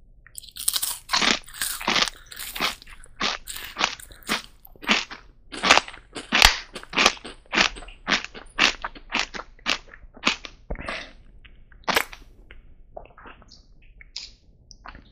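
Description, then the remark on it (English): Loud crunching of a crisp snack scooped in hummus, a rapid run of sharp crackly bites and chews that continues steadily for about fifteen seconds with no talking. “All right, should we get into it? Let's scoop, baby.”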